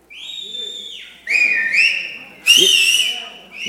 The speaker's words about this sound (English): Who can whistle real loud?